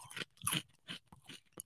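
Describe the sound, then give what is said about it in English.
Crunching of Frosted Flakes cereal being chewed as a snack, five or so crisp bursts in an uneven rhythm, fairly quiet, with no talking. “I brought some Frosted Flakes, and I feel like snacking on this a little bit.”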